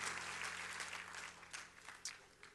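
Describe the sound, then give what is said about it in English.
A church audience claps their hands together in a dense, steady wash of applause that gradually thins, leaving a few sharper individual claps standing out near the end. No one speaks. “Clap your hands on your way down.”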